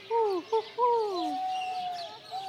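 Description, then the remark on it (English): A bird keeper by the owls imitates bird calls: a few quick, descending hooting whistles, then a long drawn-out steady note, with no other talking. “He sure does know his bird calls.”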